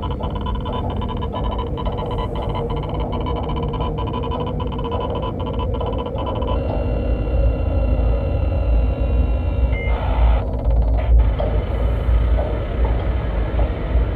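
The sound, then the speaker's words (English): A rapid, irregular string of short electronic pulses like sped-up Morse code, sent every 4 minutes from the antenna array of a destroyed Farragut ship, ticks over a steady low mechanical hum; after several seconds the pulses stop and the hum carries on with a thin tone. “And if that wasn't enough for you tinfoil hatters, if you pull up right next to the antenna array of one of the destroyed Farraguts, every 4 minutes, you hear this sound.”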